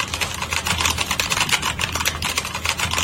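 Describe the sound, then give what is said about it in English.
Fast, steady typing on a mechanical keyboard with Cherry Brown switches, a dense run of soft overlapping key clicks with no voices. “Okay, and then here's the cherry brown sounds.”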